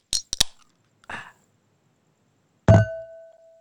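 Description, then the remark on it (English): Wine glasses clink in a toast: a few quick sharp taps, a brief scuffle, then one firm clink that leaves a clear, steady ringing tone slowly fading out. No one speaks. “Hey, wine glasses have fun sounds.”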